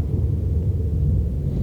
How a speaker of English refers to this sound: Storm is coming.